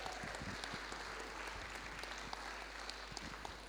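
An audience applauds in a steady round of clapping, many hands at once, sounding a little distant and filling the room evenly for a few seconds with no voices over it.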